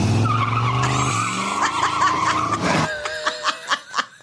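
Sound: car tires screeching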